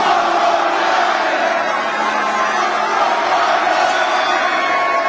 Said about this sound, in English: So anyways, here's Trump's reception at the SneakerCon. You know, SneakerCon, bunch of sneakerheads out there, and they seem to really love their Trump. Here we go. Check it out. Oh, listen to those chants.